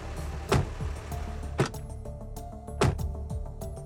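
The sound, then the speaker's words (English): A car idles with a low steady rumble at a family home while three sharp door clunks land about a second apart as children get out, with faint mechanical rattles in between. “After the kids hopped out of the car, he told them he'd see them later in the week.”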